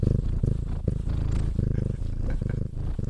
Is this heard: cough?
no